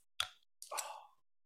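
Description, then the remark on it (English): A sharp pop with a low thud, then a short breathy hiss of escaping gas as a second drink can is cracked open, heard alone without any talking. “so I'm going to crack this second one open.”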